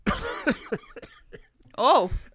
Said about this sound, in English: I'm laughing and coughing at the same time because it's hilarious.